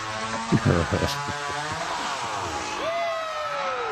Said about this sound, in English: Like, literally no one. Guy with the chainsaw. Yeah. Wait, yeah, he cuts, like, the corner off.